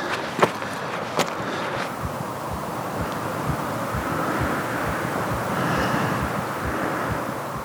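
Heavy, steady breathing rushes like muffled wind, with a quick run of soft, low heartbeat thumps pulsing underneath and a couple of sharp clicks early on. No one speaks.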